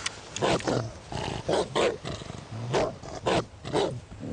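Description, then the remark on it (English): A dog growls and snarls in a series of harsh, rumbling bursts, several rough pulses in quick succession with brief pauses between them, loud and aggressive, with no talking. “Hey, man, I don't like no dogs.”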